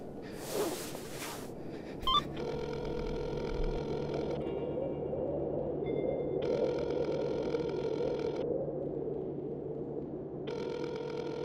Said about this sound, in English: Ah, man, I can't. You're not picking up your phone.